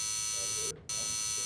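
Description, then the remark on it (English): An electric buzzer drones steadily, a harsh continuous tone that cuts out briefly for a fraction of a second before resuming at the same level. “Now, when you hear this buzzer, it won't mean a thing to you.”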